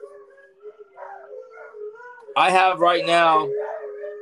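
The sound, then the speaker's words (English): Several Alaskan Malamutes howl together inside a house in overlapping, sustained tones, quieter at first, then swelling into a loud chorus of wavering cries before tapering off. “Can you hear the howls in my house? Yeah. They're harmonizing.”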